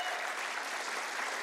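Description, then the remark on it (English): Light, polite applause from a small group, a golf clap: a steady patter of soft claps with no cheering, sustained evenly at a moderate level throughout. “And others of you, you gave me the golf clap, thank you.”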